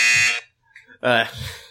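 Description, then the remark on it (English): Two loud, harsh game show buzzer blasts, each a flat, rasping electronic tone under half a second long, separated by a brief pause with faint murmuring after the second. “Go ahead, you can buzz me for that.”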